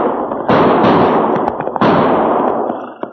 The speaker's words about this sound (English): Geronimo's ghost, Chad. Did you hear what I heard? Not only did I hear those gunshots, Cherokee, but now I can see where they came from. Hey, look over there. See that smoke rising just over the roof of that hay barn?